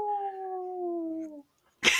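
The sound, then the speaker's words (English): A single voice imitates a roaring crowd with a long, steady, slightly falling howl-like cry, then a short pause and a sudden breathy, noisy burst. “I'm curious to hear what my crowd roaring noises sound like at the other end.”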